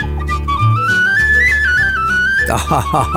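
A tin whistle plays a bright, flowing melody over low instrumental backing, the tune rising and falling steadily before livelier, rhythmic notes take over near the end.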